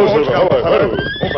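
A horse whinnies loudly, a wavering, quavering neigh that fills the brief moment, with a couple of high, thin tones trailing at the end. The Lone Ranger and Tonto rein their horses to a halt just after daybreak, not far from the town of Cisco.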